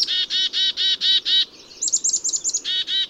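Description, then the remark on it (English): A black-capped chickadee calling: a quick run of harsh, buzzy repeated notes, a brief flurry of thin high chips, then two more buzzy notes, with no voices. “Okay, that was a black-capped chickadee.”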